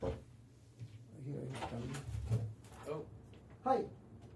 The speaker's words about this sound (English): Locked the door.